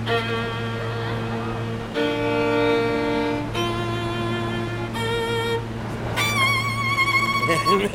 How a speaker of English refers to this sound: It's a little flat, though. It's a little flat. You hear it? The sound of the train, B flat.